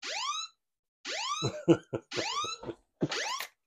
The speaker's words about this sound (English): It was holding down your emergency button, so I thought you were trying to call for, like, 911.